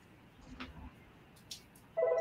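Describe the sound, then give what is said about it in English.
A loud electronic telephone ring starts abruptly near the end, a steady buzzing tone that is cut off after a moment, following a few faint clicks and soft background rustling. “Ring-a-ling-a-ling. Shut up, phone. Shut up, phone.”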